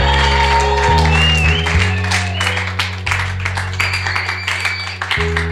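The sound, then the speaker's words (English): An audience claps steadily in rhythm for Jesus, many hands producing a dense, continuous patter, over loud sustained low keyboard or organ chords that shift pitch every second or so. “I said, let there be some joy in your clapping.”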